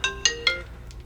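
A work-issued iPhone's ringtone plays three quick, bright melodic notes in succession, each ringing on briefly before fading, followed by a couple of fainter echoes. No one speaks.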